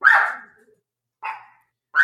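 A dog barks sharply three times with pauses between, the first bark loudest and longest, with no one talking.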